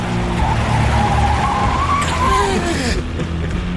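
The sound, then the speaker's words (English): Loud tire squeal as a car brakes hard and skids, a wavering high screech lasting several seconds over rumbling engine noise, with a harsher burst of scraping midway before it fades. “I glance in the wing mirror, see that he's pulled out slightly, so I drift across, and then as soon as I'm just in front of him, I slam the brakes on real hard, and just before I do, I probably say, brace!”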